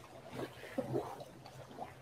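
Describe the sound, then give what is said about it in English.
A boat passes on the water among waves and wave runners, its steady low engine rumble blending with soft lapping and splashing. “True connection to nature with the occasional boat passing by.”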